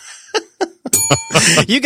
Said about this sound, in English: you get a little bell for that one. Thank you. I like that. I like that roamed bell.